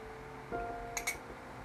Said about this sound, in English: But, and I know you guys are tired of hearing this teacup clink, but I'm actually getting into this type of cup of tea.